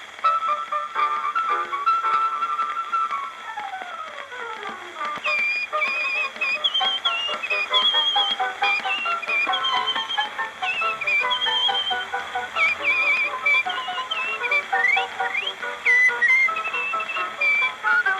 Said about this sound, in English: This is … performing his amazing whistling tricks and …. The …, whistled by …, accompanied on the piano by Professor Geisberg.